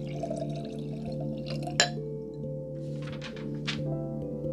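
Liquid pours steadily into a cup for a few seconds, a soft trickling splash with a faintly ringing, rising tone, quiet, with no voices.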